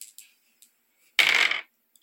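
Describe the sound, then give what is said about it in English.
Dice clatter on a table during a tabletop game: a few light clicks, then a short, bright rattling burst as they tumble and settle, with no voices. “Please roll another dice.”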